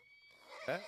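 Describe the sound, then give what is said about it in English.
A short, bright horse whinny from a sound sample rises sharply near the end, loud, with a faint breathy hiss leading into it and no talking. “Anybody in here ever watched Girl Fung a Horse? Yep. There we go. There it is. That's the sample for this moment.”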